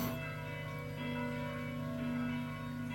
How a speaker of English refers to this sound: Well, as you can hear in the background, it is Pentecost. Oh no, it's a normal Sunday. Oh no, it's Pentecost. Whatever, the church bells are ringing.